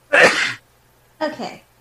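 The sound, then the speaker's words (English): A single loud sneeze bursts out, followed after a short pause by a brief spoken word. “Bless you, …. Bless you.”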